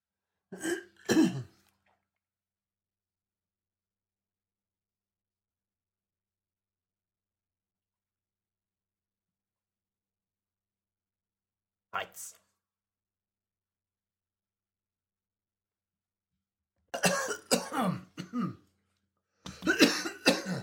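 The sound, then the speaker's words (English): Several bursts of coughing and throat clearing, fairly loud, scattered across a mostly silent stretch: one at the start, a brief one midway, then a longer cluster near the end. “Cough up”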